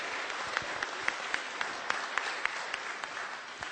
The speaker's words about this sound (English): Why don't you give a round of applause? Thank you.